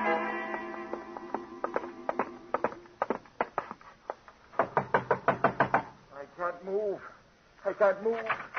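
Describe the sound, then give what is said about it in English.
Several loud bursts of rapid, hard knocking on a locked door, a quick rat-a-tat repeated three or four times, with a man's voice before and after the knocks. “The door's locked, Gino.”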